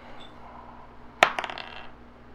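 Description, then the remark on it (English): Dice hit a hard table with a sharp clack, then tumble through a quick series of fading clicks and rattles before settling, over a faint steady hum. “Can I add to this, or do I have to re-roll? That's a re-roll.”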